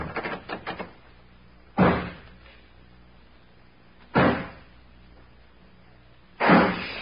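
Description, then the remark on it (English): A few quick metallic clicks as a door is locked from the outside, followed by three heavy, evenly spaced bangs as someone forces the door, each a loud, booming thud with silence between. “I'll lock this door on the outside.”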